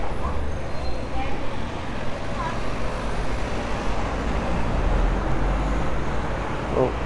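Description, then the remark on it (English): Steady road traffic rumbles as cars pass continuously, a low, dense roar with no breaks, with faint indistinct voices mixed into the background. “You can never tell which direction the cars are actually going to go.”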